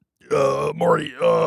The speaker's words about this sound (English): It's making me burp a lot. I feel like I got to burp a ton right now.